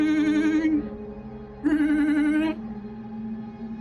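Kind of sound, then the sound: household object, rotary telephone bell ringing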